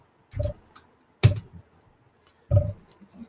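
Three short bursts of clicky computer keyboard typing, each a quick cluster of keystrokes separated by brief pauses, fairly quiet with no talking.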